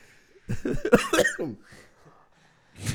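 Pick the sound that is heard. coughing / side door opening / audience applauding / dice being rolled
coughing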